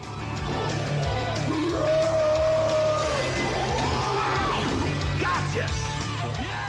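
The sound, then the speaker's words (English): A Goomba, chasing Mario and a girl sledding down a frozen air vent, lets out a loud, drawn-out scream voiced by Frank Welker that wavers and swoops in pitch, set against a dense, rumbling background of noise and commotion. “One of the Goombas screams, is that Frank Welker again, I hear?”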